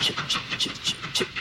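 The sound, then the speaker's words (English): A train at a train station picks up speed along the rails with a steady, rhythmic clickety-clack, the wheels beating a quick repeating pattern of bright metallic clatters, loud, with no voices. “So now listen to the train's going off.”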